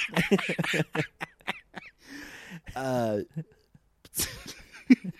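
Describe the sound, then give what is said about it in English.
Someone imitates a duck with one loud, nasal, drawn-out quack, set between stretches of quick conversation and laughter. “Quack.”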